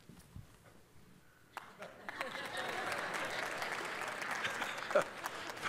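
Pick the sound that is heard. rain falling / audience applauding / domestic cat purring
audience applauding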